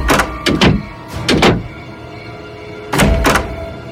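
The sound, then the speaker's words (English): Doors and windows being shut and locked tight for the night as it gets dark: solid thunks and clacks arriving in quick pairs, separated by short pauses, with no voices. “Tito took his dog inside, and they locked the doors and windows tight.”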